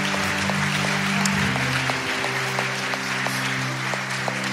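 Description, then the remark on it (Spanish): An audience claps for the Lord during a church service in a dense, sustained wash of applause, steady and loud throughout, with a sustained organ-like tone humming underneath and no voices standing out. “Usted le daría unas palmas al Señor en esta tarde. Désela grande.”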